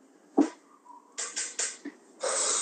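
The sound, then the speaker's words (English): A quick sharp burst followed by several breathy, hissing gusts and a longer rush of air, like a sneeze with sniffly exhales, with no talking. “God bless you.”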